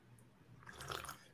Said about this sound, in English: A little slurpy here today. It's not too bad. A little slurp slurp, a little orange chicken for dinner.